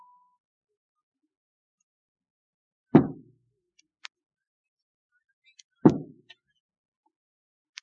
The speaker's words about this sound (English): Two raps if you can come through. Three if there is interference.